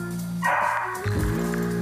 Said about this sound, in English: Look at this kid's 13 recording it, and then the dog Bruno finally scared the tripod, the three-legged bear, away.